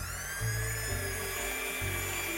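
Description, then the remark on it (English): A little handheld blender whirs steadily, beating in eggs added one at a time so they form a ribbon, with a continuous high motorized whine and a low rumbling hum that shifts slightly in pitch as it runs. “And I've got a little handheld blender, and let's blend.”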